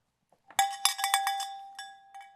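A small handbell rings in a quick, uneven series of bright metallic strikes, each tone overlapping the last with a steady high ring, then tapering into a few lighter dings. No voices.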